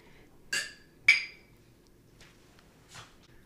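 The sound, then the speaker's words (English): Two bright glass clinks close together near the start, like shot glasses tapped in a toast, followed by a couple of softer knocks over a quiet background. “Pour a shot. Cheers, everyone.”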